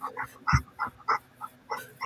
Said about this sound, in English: Wind chimes and her dog breathing right on her, right next to the microphone. She can't help it. She's tired. See, I couldn't hear what you said because it's panting's too loud.